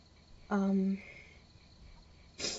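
crickets chirping

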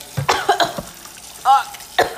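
sudden cough

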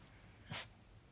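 dog sneezing

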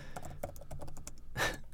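computer keyboard typing clicks

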